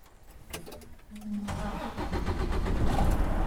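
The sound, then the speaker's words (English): A semi truck's engine cranks with a whirring starter, then catches and rumbles into a loud, steady diesel idle that builds in volume, with no talking, as the automatic truck is started for a media demonstration at a truck driving competition. “So first thing, start up your truck.”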